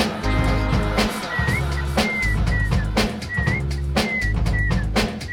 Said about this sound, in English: Right, this is the whistle part of the show.